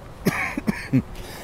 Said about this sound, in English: Here we go. This is the kind of coughing that I've had for the past week. That, of course, caused some mucus to come up, and then that was what he could sample more easily.